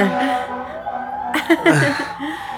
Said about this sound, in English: And I also was killing time for these sirens. We probably should start talking about something else, because you know what that siren means.